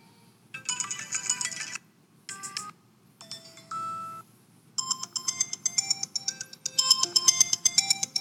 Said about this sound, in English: Phone's ringing. You're called this morning. I said the phone's ringing.